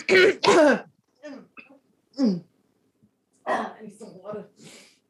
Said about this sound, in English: So sorry. First, clear your throat.